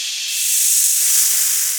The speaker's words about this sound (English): Spooky red steam coming from the collaborative open pod.